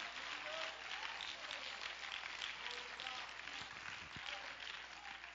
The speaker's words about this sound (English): Oh, somebody clap your hands if you know what I'm talking about.